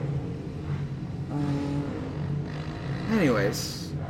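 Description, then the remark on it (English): Motorcycles pass by in the background, a low, steady engine rumble that swells slightly toward the end, heard beneath indistinct voices. “There are motorcycles going by.”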